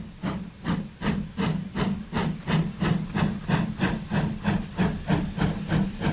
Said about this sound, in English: So I made like a general train library with diesel and electric from Europe and... a steam train from Wisconsin.